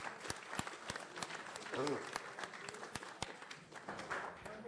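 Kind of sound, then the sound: crowd, audience round of applause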